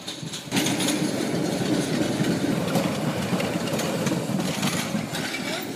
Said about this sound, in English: Oh, hold on. Here's the train.